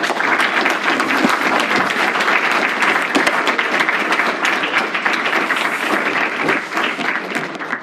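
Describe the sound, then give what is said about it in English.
An audience claps steadily for several seconds, a dense, continuous wash of many hands with no gaps and no voices rising above it. “Will you help me thank Graydon Royce for his”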